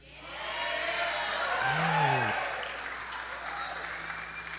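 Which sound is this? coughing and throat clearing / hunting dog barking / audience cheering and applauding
audience cheering and applauding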